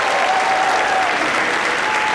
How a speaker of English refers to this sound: Well, listen, man, I would like to thank you all for coming out, man. You have been amazing. Put your hands together for yourself.